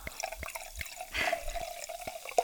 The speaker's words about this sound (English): She poured me like a quarter of the glass. Oh, you've got the biggest glasses in the world, okay?